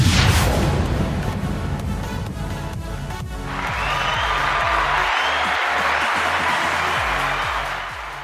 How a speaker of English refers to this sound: All right, the clapping started late that time. Crowd didn't get the initial joke, I guess.